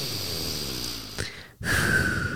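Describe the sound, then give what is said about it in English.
A slow, deep breath, a long airy inhale through the nose, a brief pause, then a steady breathy exhale through the mouth. It's fairly loud, with no talking. “Please focus on your breathing. Yes. In through your nose and out through your mouth.”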